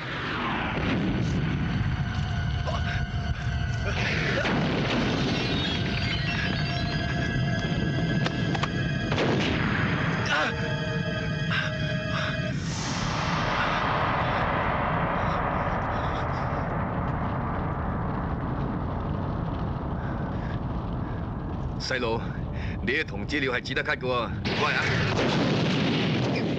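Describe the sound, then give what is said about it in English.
Loud, repeated explosions of gasoline bombs boom one after another in a real building during the shooting of a film's hospital scene, over 10 blasts in all, with heavy rumbling and crackling debris filling the space between blasts and a final burst near the end. “We shot a gasoline bomb in a real building. So there was over 10 explosions in a hospital scene.”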